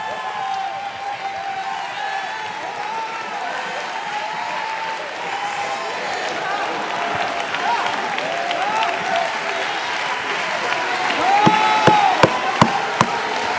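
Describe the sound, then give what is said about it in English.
A large audience claps and shouts continuously, a dense wash of applause with scattered whoops and cries that swells louder toward the end, punctuated by a few sharp claps. “You ought to clap your hands. You ought to shout.”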